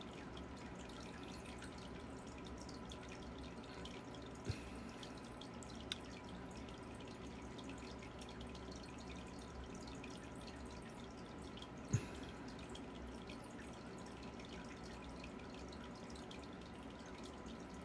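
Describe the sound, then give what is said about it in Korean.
Steady aquarium water trickling runs throughout, a constant low burble with a few faint drips popping out now and then, continuous with no talking. “저의 아쿠아리움 소리예요.”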